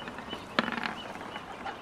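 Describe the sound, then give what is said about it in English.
Someone briefly imitates a chicken, calling another person a chicken for not having a rematch, with a short burst of a few quick clucking sounds at moderate volume, followed by faint background noise. “You're telling him he's a chicken now for not having a rematch, and they're like, now, come on.”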